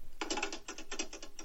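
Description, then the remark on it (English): A rotary telephone dial whirring back several times in a row, each return a quick burst of dry, rattling clicks separated by short pauses, with no voices. “Well, yeah, I mean, it'd have to be on the rotary, though.”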